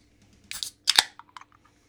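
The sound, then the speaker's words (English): A can of Otter Creek Brewing Company Free Flow hazy IPA being cracked open: a short metallic click, then a sharp hissing burst of escaping gas, followed by a few faint fizzing ticks. No one speaks. “Literally never seen this can before. I'm not setting up video for this, so you guys are just going to have to listen.”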